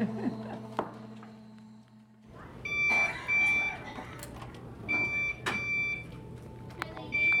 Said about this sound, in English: What's that beeping noise? Do you know?